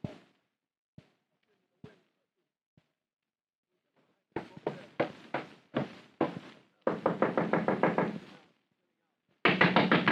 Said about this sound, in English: Girl, come in. Don't knock my door down.